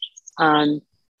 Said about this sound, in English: I'm having some delight because there's some bird that's just talking in the tree.